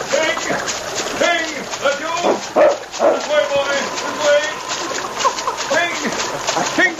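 A dog barks and whimpers amid splashing, sloshing water as it swims with a man toward a riverbank in a swift current, its yelps coming in repeated, uneven bursts over several seconds.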